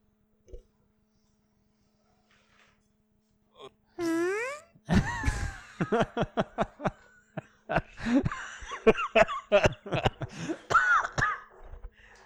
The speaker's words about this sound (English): Oh my god. No one can resist a good fart sound.